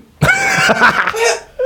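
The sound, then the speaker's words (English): A loud, raspy cough drawn out into a throat-clearing rasp for over a second, followed by a brief catch of breath. No talking. “I'll like have a cough and I'll be like...”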